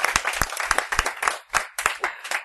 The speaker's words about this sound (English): Awesome. That's worth a round good of applause.